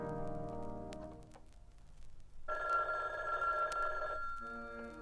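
A telephone rings with a steady electronic warble, one sustained burst clearly audible after a softer musical tone fades out.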